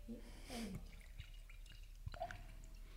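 Estate Sauvignon Blanc wine glugs softly into a glass in a few quick gurgling bursts near the start, followed by a faint tap and quieter trickling, low in volume overall, poured for a first toast.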